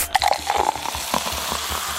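A soda can snaps open in a locker room and fizzes, a steady crackling hiss of carbonation with small pops running for about two seconds, no voices.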